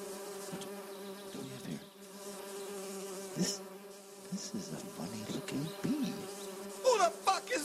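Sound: bees buzzing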